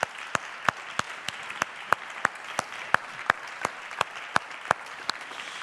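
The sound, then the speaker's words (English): An audience applauds the preacher after his sermon, steadily throughout, a dense wash of clapping with a few sharp, evenly spaced claps standing out in a regular rhythm. No one speaks. “Can we give Andy a huge round of applause?”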